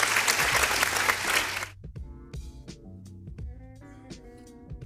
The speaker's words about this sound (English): I know the motherfucking applause is there.